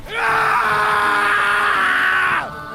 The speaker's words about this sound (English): starts yelling and screaming